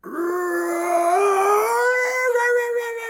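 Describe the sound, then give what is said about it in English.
A person imitates a krayt dragon scream with one sustained, howling vocal cry that starts low, slides upward in pitch and holds steady, loud and raspy for about three seconds. “I don't know if you can remember what the crate dragon scream says. He uses it to scare away the sand people.”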